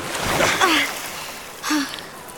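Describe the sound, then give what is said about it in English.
Two short bursts of water splashing and sloshing as water is emptied out of boots, moderately loud, with brief breathy vocal sounds mixed in and no clear speech. “I just need to get the water out of my boots.”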